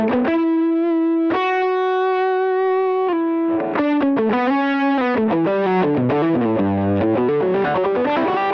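An electric guitar played through a fuzz pedal pushing a tube screamer, sustained notes buzzing with dense, harsh, oscillating overtones, then a run of shifting notes and bends, loud with no talking.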